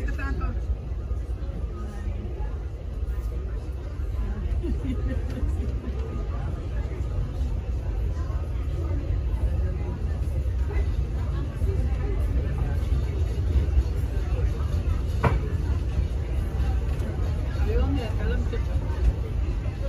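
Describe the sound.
Steady low rumble of a moving Disney theme park railroad train on a straightaway heading toward Tomorrowland, with a constant murmur of passenger chatter and indistinct voices on top, continuous throughout.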